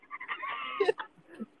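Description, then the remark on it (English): A dog lets out a strained, wavering whine that rises and bends in pitch, then breaks into a few short, choppy yelps, moderately loud. “Bro, is this dog it's like, a crazy thing, like bro.”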